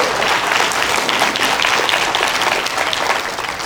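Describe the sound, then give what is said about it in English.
A church audience at a morning service claps hands in a steady, dense burst of applause lasting several seconds, loud and continuous with no voices standing out above it. “Somebody clap your hands this morning.”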